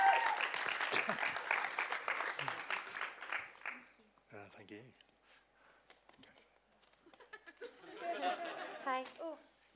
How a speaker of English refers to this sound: Great. Let's give him a clap.